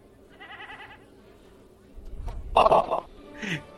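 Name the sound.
sheep bleating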